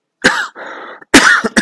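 A person coughs, one harsh cough, then a raspy breath in, then a quick cluster of three more loud, chesty coughs. No one speaks.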